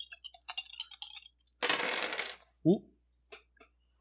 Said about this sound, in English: Ooh. Throwing dice on floor. One hit the floor. I got to re-roll that.